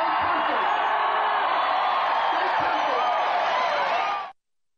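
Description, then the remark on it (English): A large crowd roars and cheers loudly and continuously, with whoops rising out of a dense wall of voices, like an audience at a rock concert, before cutting off abruptly. “You hear that cheering? That is rock star cheering. That is rock show cheering.”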